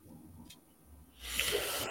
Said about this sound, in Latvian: Labi, šito papīru plešam nost. Un griežam šito vaļā.